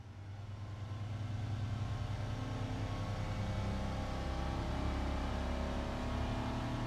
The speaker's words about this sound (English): drives the workboat out of the Bridge Bay Marina headed towards the southeast arm of the lake, over 15 miles away.